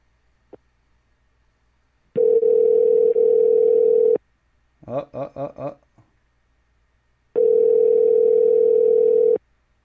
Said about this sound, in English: Oh, you hear the phone ring?